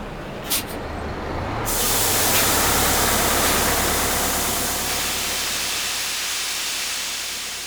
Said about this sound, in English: 20 minutes later, a steam bus stopped outside the college and ejected a most unexpected sight.